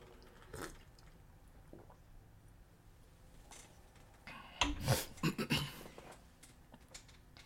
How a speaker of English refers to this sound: Prepare your mind as I sip water.